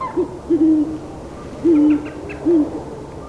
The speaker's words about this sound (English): The great horned owl sounds, a patina of deep, strong notes which carry through the canopy to where his mate guards their nest.